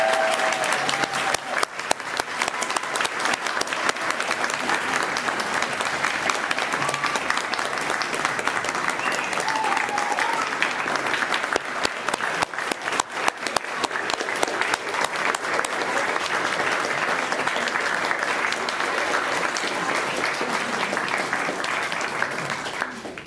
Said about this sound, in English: All right, so before I hand it over to Commissioner Lusala to close the ceremony, let's all give all the honorees one more round of applause for all the fantastic work they've done in our community.